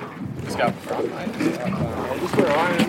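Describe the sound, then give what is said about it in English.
A small boat moves across calm, turquoise water in Salamander Bay, Port Stephens, at low tide as workers haul trays of wild Sydney rock oysters over the side one by one. A steady wash of water and wind noise runs throughout, with faint, indistinct voices in the background. “pulling in trays of wild catch Sydney rock oysters, hauling them over the side of the boat one by one.”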